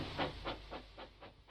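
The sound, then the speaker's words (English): A steam engine, Thomas, puffs out a steady run of about six hissing chuffs, evenly spaced and fairly quick, with a low rumble underneath and no voices. “Thomas likes whistling rudely at him.”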